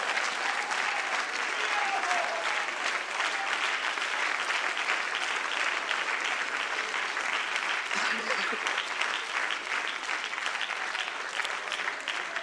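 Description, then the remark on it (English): A church audience stands and claps hands steadily throughout a worship service, a dense, sustained wash of applause from many people at an even, loud level. “Everybody stand and clap your hands for a moment.”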